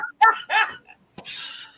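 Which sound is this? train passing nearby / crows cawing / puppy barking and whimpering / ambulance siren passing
puppy barking and whimpering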